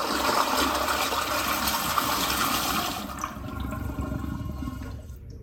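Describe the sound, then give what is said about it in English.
A toilet flushes with a loud, broad rush of swirling water for about three seconds, then fades into a quieter gurgling refill as the tank drains and settles. “And if you want to see with your own eyes a video of the bright green dots from a toilet flush,”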